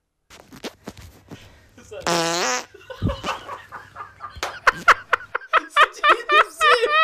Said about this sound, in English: It had like three segments to it. It had like an unzip, a fart, and then a re-zip.